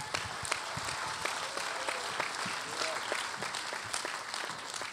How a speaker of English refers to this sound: And she's written a number of songs on the album, and I want you to just give her a clap and welcome her.